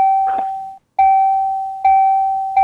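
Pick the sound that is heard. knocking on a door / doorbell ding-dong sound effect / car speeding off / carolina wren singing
doorbell ding-dong sound effect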